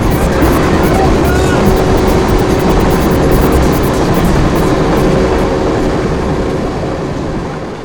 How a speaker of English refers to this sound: There'll be a train. It'll be moving.